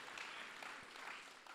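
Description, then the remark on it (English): A large audience claps together at a sermon in a dense, steady wash of applause that holds evenly throughout the short moment, with no voices standing out. “come on, let's clap together and just, we're moving our faith over to the Lakers.”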